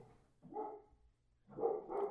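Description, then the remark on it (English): A dog barks a few times in short, throaty bursts with a brief pause between them, fairly faint, with no talking over it. “Woof. God damn it.”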